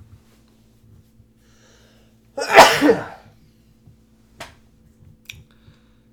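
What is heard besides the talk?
sneeze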